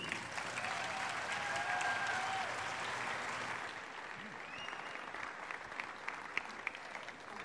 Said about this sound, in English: So, ladies and gentlemen, please bring your hands together and clap loudly as we bring back Dr. Ray Grendy.